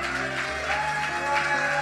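A crowd's round of applause, a steady wash of clapping that swells slightly in waves, with a sustained low musical tone humming underneath throughout.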